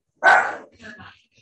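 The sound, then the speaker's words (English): A single sharp dog bark rings out outside, followed by a softer, shorter yelp or woof a moment later. “Oh, there's a dog outside.”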